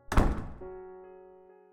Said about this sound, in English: The second the door slammed shut, it was clear that Jeannie had won.